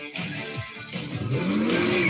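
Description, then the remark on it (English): A race car engine revs up, its pitch climbing steadily over a couple of seconds. It sounds loud, with a rough, continuous roar and no voices. “It's racing.”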